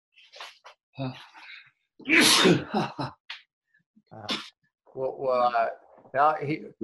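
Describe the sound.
A single loud, explosive sneeze bursts out midway through, set between stretches of conversation.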